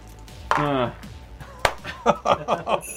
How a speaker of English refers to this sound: So what we need is me to roll my reaction dice and get both reactions. Yes, because to activate them before exactly. Yeah. You can do it, dude. Pressure's on. You got three dice.